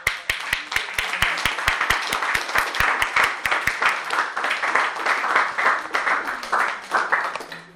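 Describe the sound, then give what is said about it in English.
A crowd breaks into sustained applause given as a big hand for Jesus, with many hands clapping in a dense, crackling wash, and a few sharp individual claps standing out at the start, steady for several seconds. “So we give Jesus a big hand.”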